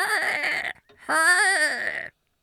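Two loud, shrill cries from seagulls floating in the breeze over a beach, the first short and the second longer with a wavering, warbling pitch, heard alone with a brief gap between them.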